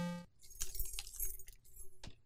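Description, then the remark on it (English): A set of keys is tossed onto a table, landing with a bright metallic jangle and a cluster of clinks that settle over about two seconds. “Neff, will you stop throwing your daggum keys? You threw your keys.”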